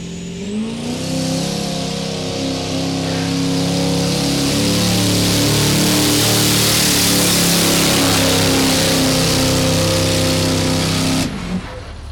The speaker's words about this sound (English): Garrett Olsen, last truck of the day for Diesel Power Challenge 2018 sled pull. Let's see how he does.